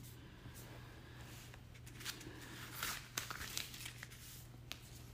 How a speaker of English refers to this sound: Y'all turning pages? Y'all should be turning pages.